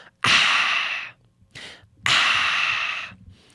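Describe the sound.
Two long, breathy, satisfied "aah" exhales, like someone refreshed after gulping water, separated by a short quick breath. The sounds are loud and airy, with no talking.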